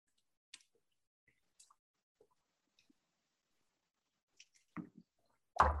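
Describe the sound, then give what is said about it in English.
People taking a shot of liquor: a few faint wet mouth clicks and swallowing sounds in near silence, then a couple of gulps and a sharp, breathy exhale at the very end. No one speaks. “So after we take this shot, I'll do my ATL recap.”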